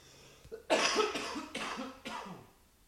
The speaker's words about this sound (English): I need to cough. Those COVID-y symptoms and what the fuck.